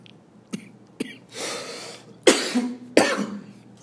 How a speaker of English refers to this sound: Coughing's one thing. Coughing because my throat's dry and I'm drinking coffee at like 6 in the morning.